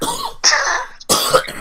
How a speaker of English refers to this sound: Like I said, guys, I'm still getting over this cold, so excuse the cough.